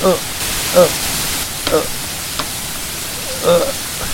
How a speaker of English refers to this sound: Ooh, I'm getting wet. It's coming sideways. That rain is coming sideways.